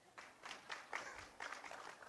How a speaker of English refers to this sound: Amen. Thank you for that one clap.